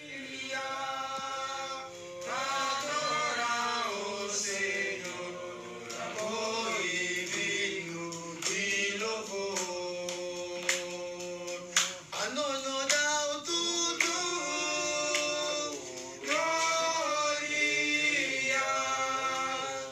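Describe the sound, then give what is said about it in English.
A group of voices in a church sings a hymn, started by a man, in sustained, harmonized phrases. Sharp hand claps from someone in the corner punctuate the singing in an uneven rhythm. It is recorded on a phone without a sound system and is fairly loud throughout. “And so so this guy gets up there, and he just starts singing this hymn.”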